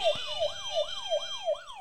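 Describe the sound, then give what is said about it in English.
A game show answer buzzer in a multiple-choice trivia quiz sounding as a rapid, warbling siren-like wail, its pitch sweeping up and down about five times in under two seconds, steady and fairly loud with no talking. “Can you buzz yours again?”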